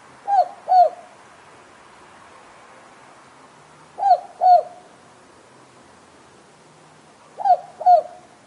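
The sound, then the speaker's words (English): A southern boobook owl (Australian boobook, Ninox boobook) calls its two-note boo-book hoot three times, evenly spaced a few seconds apart, clear against a quiet night background with no talking. “People in Australia are most likely to hear the southern or Australian bubuk calling in the night.”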